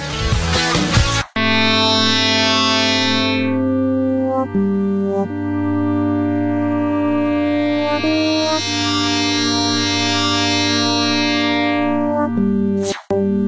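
Video game soundtrack music: layered, sustained synthesizer tones with a dreamy, echoing feel, playing steadily and fairly loud on its own, with a short abrupt cut near the start and the end.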